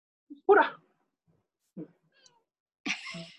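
A cat named Master Cat Puda meows three times at uneven intervals, short, with quiet pauses in between. The last call is a bit longer and drawn out.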